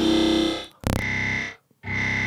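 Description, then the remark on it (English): Buzzy, heavily processed synthetic tones with dense harmonic stacks, broken by a sharp loud burst and a brief silent gap before the warped tone resumes, sounding like a sine wave run through convolution. “The sine wave, boys.”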